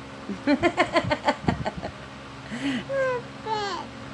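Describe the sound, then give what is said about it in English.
A voice in a recorded phone message mimics bird calls: a rapid run of clucking pulses, then a few drawn-out, downward-sliding calls repeated about three times, fairly loud and unaccompanied by speech. “Oh, that's not a chicken, that's a bird.”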